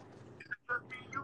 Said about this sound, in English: He dipped. You asked that question and he hung up the motherfucking phone.